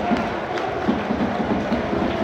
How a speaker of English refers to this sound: Players coming over and applauding now. They're getting a reception at least. Some boos.